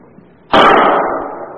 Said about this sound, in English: That sounds like a pistol.